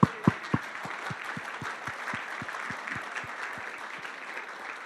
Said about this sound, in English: I just want to give you a big round of applause